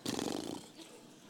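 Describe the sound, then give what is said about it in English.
A person imitates a horse-like exclamation of despair, a breathy, rough snort lasting about half a second that trails off into quiet room tone. “Sort of a horsey exclamation of despair.”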